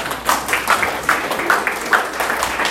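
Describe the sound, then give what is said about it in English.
An audience applauds in a steady round of clapping, a dense, fairly loud patter of many hands that holds evenly throughout with a few sharper claps popping out of the wash. “Give yourself a round of”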